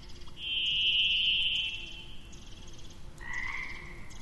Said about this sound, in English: We head off down the trail, and the birdsong just comes alive. And somehow it sounds different. And really, like, you can hear how lively all the bird song is right now. They have a lot to say. It's like their first communication of the day.